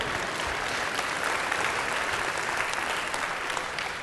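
Steady audience applause during a sermon fills the whole stretch, a dense wash of many hands clapping at an even, fairly loud level with no voices standing out.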